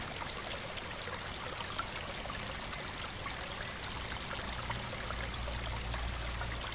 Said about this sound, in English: In the distance, you spot a log lying on its side by what appears to be a small stream snaking its way toward the main river.